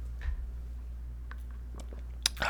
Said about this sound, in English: Before I get to it, though, I just want to take a sip from my coffee cup. Hold on a second.